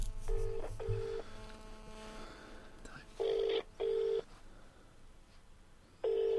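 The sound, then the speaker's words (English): Phone dialing tones play over a speakerphone as a call is placed to a guest: several short, steady electronic beeps in uneven bursts with pauses between them, fairly loud over a faint low background hum. “Let's phone our independent guest. Let's put on speakerphone.”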